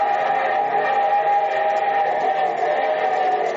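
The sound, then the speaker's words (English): A steam train's whistle blows in one long, sustained, loud blast, its steady harmonic tone held over the rumble of the moving train, as the show train opening of the radio programme The Railroad Hour, with no talking. “And from Hollywood, here comes our star-studded show train.”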